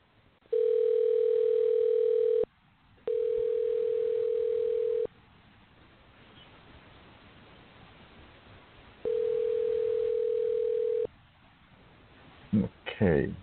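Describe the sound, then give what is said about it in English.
A telephone tone heard through a phone line while calling someone back after a dropped call: three steady, two-second electronic hums, separated by a pause and then a longer gap, over faint line hiss, with a short burst of sound at the end. “Let me call him back right now.”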